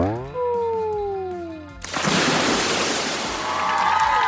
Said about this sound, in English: Oh hey, a whale watching boat. Hi guys, wanna see me splash? Okay, here goes.